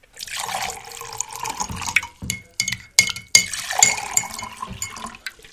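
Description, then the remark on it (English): Coffee pours steadily into cups in a gurgling stream, broken by several bright, ringing clinks of a spoon stirring against ceramic, then more pouring; no one speaks. “You ready for some coffee, honey?”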